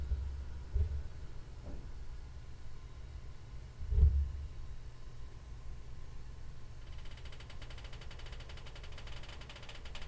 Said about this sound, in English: I woke to hear the propane heater come on.